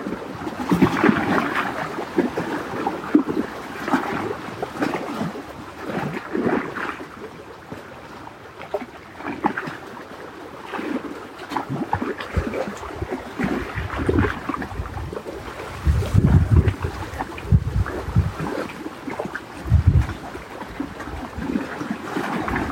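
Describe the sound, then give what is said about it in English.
A gentle breeze blows steadily over a lake, with soft lapping and a few low, rumbling gusts buffeting the microphone midway. No one speaks; the outdoor ambience stays continuous. “Lightness of the breeze, the water holding light.”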